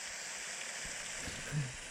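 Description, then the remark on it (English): Rain pattering on a tent blended with brown noise, played as a sleep sound mix, forming a steady, even hiss with a few soft low thumps underneath and no voices. “So we'll do, I like a rain on a tent and brown noise together.”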